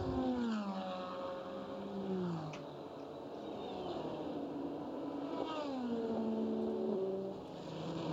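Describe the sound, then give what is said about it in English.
Loud racing car engines roar past one after another at turn five, among them a red BMW and DPI and LMP2 prototypes, three across the track at one moment. Their pitch sweeps down as each passes, with a constant high-revving drone filling the background. “And for a moment, there were three across the track. LMP2 pushing away.”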